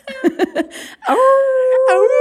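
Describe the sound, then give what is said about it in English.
A few short chuckling bursts, then a person's voice lets out a long, loud, sustained howl that swoops upward near the end, imitating a wolf's call. “Sound like a wolf call.”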